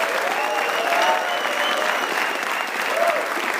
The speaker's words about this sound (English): Let's give yourselves one more final round of applause.